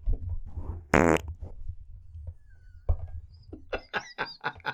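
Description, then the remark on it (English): A loud, sputtering fart bursts out near the start, followed by a few shorter squeaky blips and rumbling noises, then a flurry of quick, higher-pitched squeaks toward the end. “I see the fart blip.”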